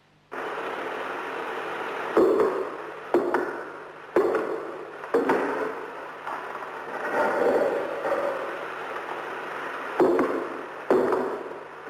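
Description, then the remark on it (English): Heavy footsteps thud on the stone floor just in front of an altar rail, about half a dozen sharp, weighty impacts spaced roughly a second apart at first, then pausing, over a steady hiss of static. “If those were footsteps, they must have belonged to a very large and powerful man.”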